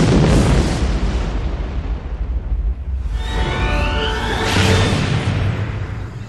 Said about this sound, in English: Something smashed into the force dome and exploded.